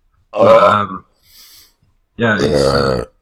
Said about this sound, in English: I feel kind of left out because I'm not belching so much today.